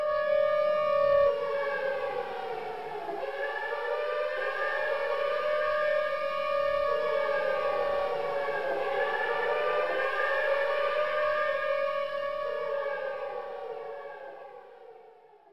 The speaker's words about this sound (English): 15 minutes later, 3 or 4 hours after the MIC reaction had begun, someone finally turned on Union Carbide's alarm system.